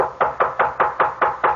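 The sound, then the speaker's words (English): A quick, steady run of about seven knocks on a door, evenly spaced and fairly loud, with no voices around them. “Come in if you want to.”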